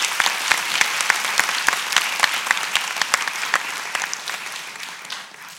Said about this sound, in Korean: 비록 저희 팀은 아니지만 팀 카이스트가 얼마나 열심히 연구했는지를 곁에서 지켜봤기 때문에 그들에게 열정과 노고에 이 자리를 빌어서 다시 한번 뜨거운 박수를 보내고 싶습니다.